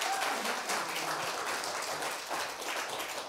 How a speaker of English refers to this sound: Let's give him a round of applause as he comes up.